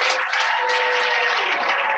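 A crowd claps in steady, dense applause, a loud continuous wash of many hands at an even level throughout, with no voices standing out.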